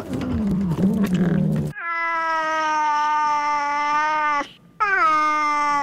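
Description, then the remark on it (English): A cat, the Yule Cat, lets out two long, loud, strained yowls as if having a heart attack, the first lasting several seconds and the second cut short, following a brief jumble of noisy sound at the start. “and Bob's your uncle, the Yule Cat will have a heart attack and die instantly.”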